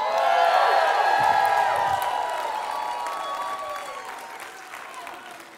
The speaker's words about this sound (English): Everybody ought to go ahead and stand up and shout.